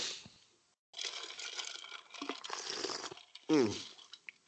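A few seconds of wet, slurping sips from a cup, ending in a short, loud, satisfied vocal 'ahh' that falls in pitch.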